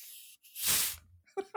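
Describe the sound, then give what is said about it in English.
A soft, airy hiss gives way to a louder rushing fizz as a shaken bottle of Coca-Cola Zero Sugar is opened, the burst fading within about half a second before two short vocal sounds. “Yeah, I got the little sizzle that, there. It's that's that nice. Bottle sizzle.”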